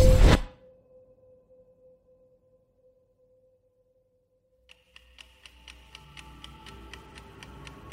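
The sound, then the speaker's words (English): A wall clock ticks steadily and quickly, fading in partway through after a sharp opening burst and a quiet, steady hum, with a low rumble beneath the ticks. “There was a clock in the room, up on the wall behind me, but I hadn't noticed that the first time I'd woken up.”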